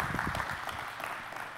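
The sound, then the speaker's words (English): A church audience claps together on cue during a sermon on prayer, in a dense, steady wash of applause that holds evenly throughout, with no distinct voices rising above it. “Clap it in.”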